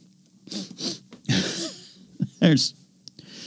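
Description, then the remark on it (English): A voice imitates sniffing: a run of short, breathy sniffs in uneven bursts, mixed with throaty vocal noises and a rising hum, fairly loud against a quiet background. “That's actually a sniffing sound effect.”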